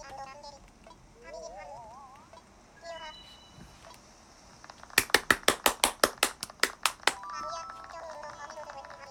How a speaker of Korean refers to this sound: 잠깐, 순서대로 이름을 부를 테니까 찬성이면 박수를 쳐달래.